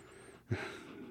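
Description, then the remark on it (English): A dog named Andy gives a quick, breathy huff followed by a soft, lingering panting hiss, fairly quiet, with no voices. “You hear him? Yeah, he's a good boy. You know, there's not a dog you can ask to be better than Andy.”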